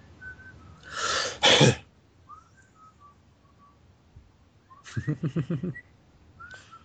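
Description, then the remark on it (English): A man whistles a quiet, wandering tune in short phrases, interrupted by a loud, harsh burst like a sneeze or cough and later a rapid, stuttering run of throaty pulses. “Whistling away like a retard in the back.”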